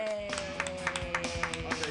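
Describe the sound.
A small group claps in a quick, uneven patter of overlapping sharp claps at moderate volume, with a faint voice murmuring underneath.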